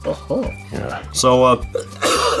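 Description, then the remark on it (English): Several rough coughs and throat-clearing bursts come in quick succession, mixed with short voiced grunts, ending in a louder, breathy hack. “is coughing okay?”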